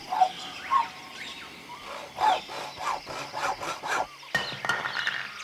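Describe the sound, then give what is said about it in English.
Jungle-like soundscape: a steady high insect drone of crickets with croaking frogs, and a bird call imitated by a saw in repeated rasping strokes and short chirps, moderately loud, no talking. “Jungle noises, crickets and frogs. I call this one I Saw It in the Jungle because the sound of that bird is done with a saw.”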